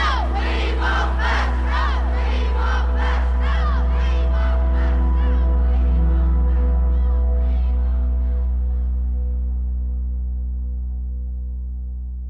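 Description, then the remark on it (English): A large crowd protesting school busing in Detroit shouts in loud, rhythmic bursts that gradually thin out and fade over the last few seconds, with a steady low hum running underneath. “Despite the outcry, back in Detroit, the school board passed the April 7th plan.”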